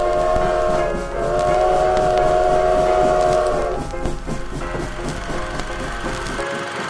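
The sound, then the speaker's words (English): A train rumbles by, its steady horn-like tone sounding over a dense mechanical roar for several seconds, then the tone drops away, leaving clattering rail noise that cuts off abruptly. “There's a train coming, sir!”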